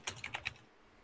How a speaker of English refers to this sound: No, I was just going to say, I just got to the computer and I'm typing all this in.